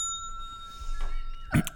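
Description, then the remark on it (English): A single bright bicycle bell ring, clear, its metallic tone lingering and fading over about a second, followed by a brief muffled knock or rustle. “So the bell thing is, we, like, the people listening at home, there's a drinking game associated.”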